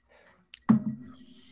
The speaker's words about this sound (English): Let me take another sip.